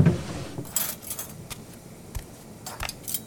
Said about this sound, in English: That drawer there has the silverware. Would you please set the table for us?